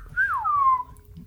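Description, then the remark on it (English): A single loud whistle that rises briefly, then glides down and holds a falling tone for about a second, like a wolf whistle, with a low rumble underneath. “Are we all bad at whistling?”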